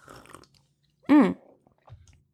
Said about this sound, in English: Y'all hear me gulping. That's so rude of me. I'm sorry.